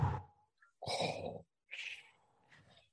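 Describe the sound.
A person imitates Darth Vader's raspy, mechanical respirator breathing: three loud breathy hisses in a slow inhale-exhale rhythm, with short pauses between them and no talking.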